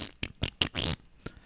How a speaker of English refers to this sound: It's the Lo-Fi Show, where we're going to fart in your face. Or in your ears, anyway.